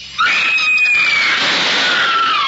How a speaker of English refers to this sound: That scream, high enough to shatter crystal.